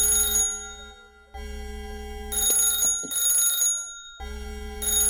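A telephone rings in loud, jangling bell bursts, three rings separated by short pauses, over a steady low hum with no one speaking.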